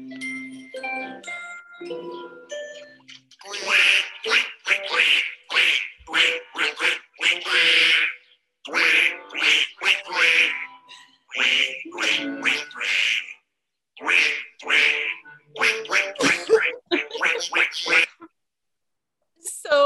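A short tinkling melodic intro gives way to a bouncy song made of loud, rhythmic duck quacks repeated in quick bursts, with brief pauses between phrases.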